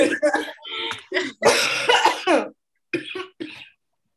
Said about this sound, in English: I mean, luckily it's not COVID because COVID sucks. That's right. Yeah. It's not COVID. Yeah. It'd be bronchitis. Yo, we're gonna be we gotta get sponsored by some cough drop. Yeah. Like for all your cough needs.